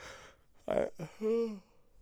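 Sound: yawn into the microphone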